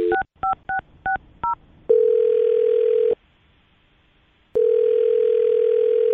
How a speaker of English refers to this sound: All right, I'm going to dial his phone number right now, okay? Okay. All right, here we go.